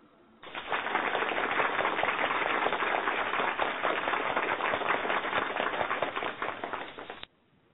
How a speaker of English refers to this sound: Thank you. I am bowing in gratitude to you all for your applause.